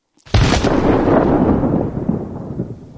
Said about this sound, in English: can we get a loud report that echoes from hill to hill?